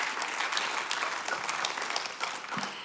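An audience claps steadily, a dense, sustained patter of many hands at an even level for the whole stretch, with no voices standing out above it.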